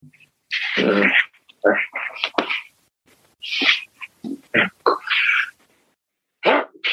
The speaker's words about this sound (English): Bless you, ….